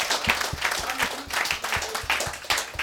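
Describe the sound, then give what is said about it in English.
An audience applauds loudly and steadily for the speaker's wife, a dense wash of many hands clapping at once, with a regular low thumping beat pulsing underneath throughout. “Clap for the woman of God. Applaudissez pour ma femme.”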